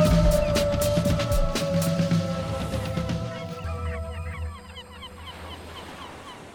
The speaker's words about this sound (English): seagulls and everything.